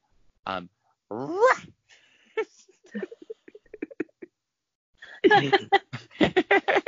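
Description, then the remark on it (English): A person imitates a disabled dog with a strained rising whine and scattered short yelps, followed by a loud run of rapid, breathy bursts like barking mixed with laughter. “A disabled dog is right.”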